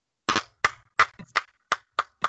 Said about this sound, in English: Oh, they clapped.